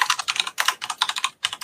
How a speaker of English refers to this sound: I can hear someone typing really hard on the keyboard. Hang on a second, let me just see who that is.